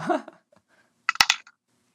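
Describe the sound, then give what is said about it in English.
After a brief murmur of a voice, percentile dice clatter onto a hard surface: a quick burst of four or five sharp, hard clicks that settles within half a second. “Percentile dice, sir.”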